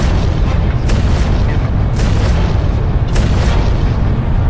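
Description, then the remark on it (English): Heavy, continuous roaring rumble punctuated by three sharp, loud bursts about a second apart as nearby water pipes burst in explosions of pressurized steam after the moisture in them boiled; powerful, with no voices. “The pipes burst in explosions of pressurized steam.”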